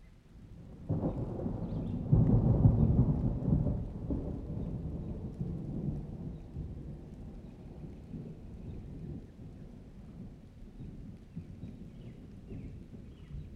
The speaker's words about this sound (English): You know what? Before I go any further, I just feel like I need this, and maybe you do too. So really, really quick, thunderstorm sounds.